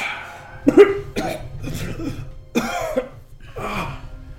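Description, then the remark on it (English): A voice imitates the character Dakin in a fit of wet, sputtering coughs as he coughs and spews up blood, water and lingering acid: a series of rough bursts over a few seconds, fairly loud, with gurgling breaths between. “He coughs and spews blood, water, and the lingering acid that even got in through his mouth. Coughs it up.”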